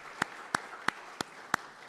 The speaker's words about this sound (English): I think a round of applause is in order for this group of individuals.